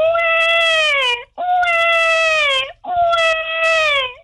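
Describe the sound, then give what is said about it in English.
A caller on the phone imitates a crying baby to win tickets, with three long, loud wailing cries, each breaking off briefly before the next, sustained with no other talk. “All you got to do when we answer the phone is whine like a little baby.”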